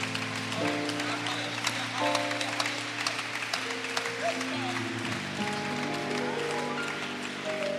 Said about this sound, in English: Why don't you give the Lord a mighty hand clap of praise this morning?